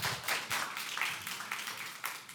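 An audience applauds, a dense wash of many hands clapping at once with steady, crackling bursts and a few sharper individual claps standing out, holding at an even volume with no one speaking.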